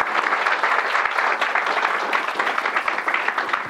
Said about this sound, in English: Ladies and gentlemen, another round of applause, please. Thank you.